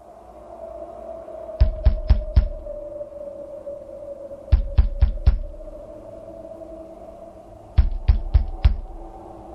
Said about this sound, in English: Here's knocking indeed. If a man were porter of Hellgate, he should have old turning the key. Knock, knock, knock. Who's there in the name of Beelzebub?